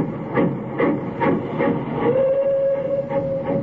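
A train pulls out of a station with a steady, rhythmic chugging of regular bursts, joined halfway through by a long, sustained whistle tone over a continuous rumbling hiss. No voices.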